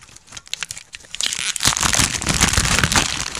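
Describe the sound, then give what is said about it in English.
Crinkling and rustling of the paper packaging of a beer three-pack as it is removed, starting with scattered crackles and building into a dense, continuous crumpling for the last couple of seconds, with no voices. “That's the paper for the three-pack.”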